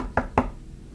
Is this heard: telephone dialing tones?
no